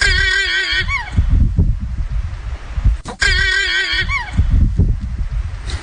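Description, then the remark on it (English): Two loud llama alarm calls from a mother llama warning her baby of danger, each a shrill, wavering, whinny-like cry that trembles and slides downward over about a second, separated by a short pause over a steady low rumble. “That's the Mama Llama. That's a llama alarm.”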